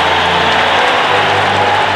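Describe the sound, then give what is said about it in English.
A packed arena crowd cheers and applauds in a loud, steady roar of clapping and voices, with no one speaking over it, as Gordie Howe of the Hartford Whalers, number 9, is introduced at the 1980 All-Star Game at Joe Louis Arena in Detroit. “The crowd savored the moment, and so did Gordie.”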